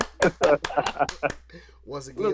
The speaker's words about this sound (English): What's happening? What's up? Round of applause.